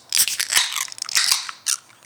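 A beer can is cracked open, held in one hand with a pint glass in the other. A run of sharp, crackly clicks and bursts of bright fizzing hiss lasts about two seconds, with a final short burst at the end and no talking.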